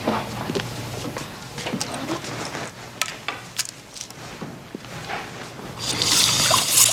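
Water is poured into a glass, with a few light clinks and knocks first, then a steady bright trickle swelling near the end.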